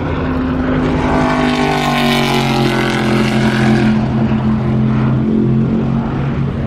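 A Corvette race car engine roars loudly throughout at the Porsche Curves, a deep, throaty V8-style drone that swells to a peak and then drops in pitch as the car passes at speed. No voices are heard.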